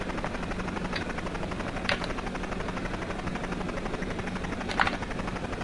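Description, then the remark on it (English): Steady helicopter rotor noise with a dense mechanical whir and low pulsing throb, punctuated by a couple of brief sharp clanks, with no voices. “Get out of my helicopter.”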